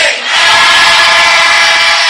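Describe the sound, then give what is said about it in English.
A church audience shouts a loud, sustained amen together after a prayer, a dense roar of many voices that swells in after a brief dip and holds steady at full volume. “In Jesus' name, I pray with thanksgiving, and the saints of God will give their loudest amen.”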